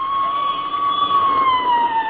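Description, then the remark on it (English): A police squad car siren wails steadily, a loud sustained tone that holds its pitch and then drifts slightly lower as the car goes by, with no voices over it. “There goes another squad car, McGee.”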